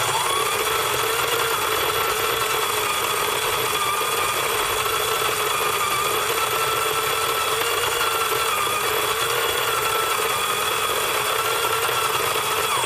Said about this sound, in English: If you sent in coffee maker, that is absolutely correct. Well done.